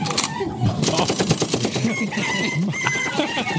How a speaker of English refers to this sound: But they did one where they added gunshots during the video at key moments.